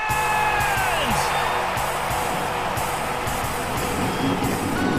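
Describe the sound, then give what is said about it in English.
A race car engine starts and revs, its pitch sweeping upward before settling into a loud, steady, dense growl that fills the whole five seconds with no voices. “Start your engine!”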